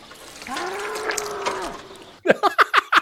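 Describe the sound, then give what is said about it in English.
A bull lets out a single long, drawn-out moo, followed by a quick series of short, sharp grunting bursts; no voices. “We don't have a cow. We have a bull.”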